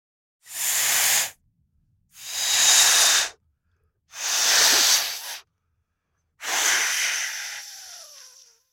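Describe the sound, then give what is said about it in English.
A balloon being blown up with four long, breathy puffs of air separated by short pauses; the last puff trails off with a faint rubbery squeak as it fades. “Balloon blowing up.”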